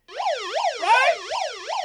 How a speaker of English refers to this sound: It's an alarm.